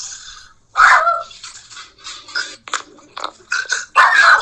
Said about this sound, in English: My dog's even freaking out.